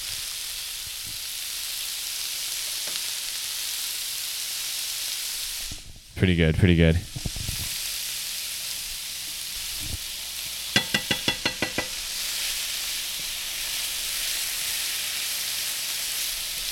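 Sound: meat sizzling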